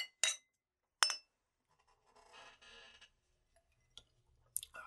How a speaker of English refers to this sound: Now let's have a little cheers. A little cheers. Whiskey. Scotch. The scotch.